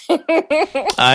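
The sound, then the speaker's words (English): A voice imitates a cough with a quick run of five short, throaty, voiced bursts, loud, the last one drawn out longer and higher than the others. “Over them, they would cough like that.”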